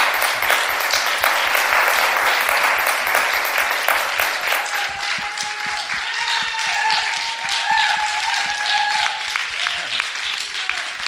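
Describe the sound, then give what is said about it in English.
A church audience applauds the pastor for obeying God: dense steady clapping with cheers and scattered voices rising over it, then a few tonal whoops or a sustained note threading through the last half. “Well, let's first of all give Pastor a round of applause for just obeying God.”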